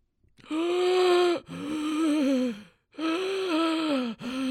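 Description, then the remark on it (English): Loud, heavy breathing: three long, strained breaths with a raspy, almost moaning voiced edge, separated by brief pauses. No speech. “Can you stop breathing so loudly, please?”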